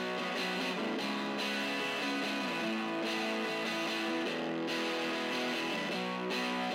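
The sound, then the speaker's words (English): A lightly distorted electric guitar plays a steady chorus section of strummed chords, full and continuous at a moderate, even level with no voices. “And then, of course, you've got the chorus itself. It's really not that much distortion.”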